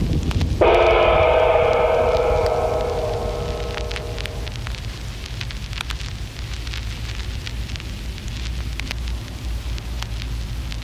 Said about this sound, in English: You may proceed whenever you hear the sound of the gong.